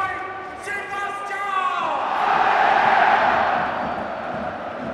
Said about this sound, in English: Those that you can hear are the Borussia Mönchengladbach fans. Still making plenty of atmosphere, despite the fact that their team is on the wrong end of what's looking an increasingly ugly result for them.